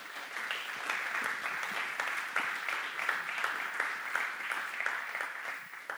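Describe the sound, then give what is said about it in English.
A crowd applauds steadily for several seconds, many hands clapping at once in a dense, even patter without voices, giving God a big hand clap. “Let's give God a big hand clap.”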